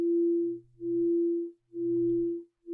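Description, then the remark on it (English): A low, humming gong tone rings out alone, its sustained resonance swelling and dipping in about four steady pulses, with a deeper undertone beneath the main pitch. “When you hear this gong sound, how do your mind and body respond?”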